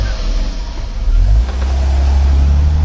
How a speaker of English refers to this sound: This is what driving with an out-of-tune engine feels like. Keep your engine running smooth.